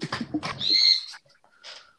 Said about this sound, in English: Don't worry. I'm gonna make this bird fly away.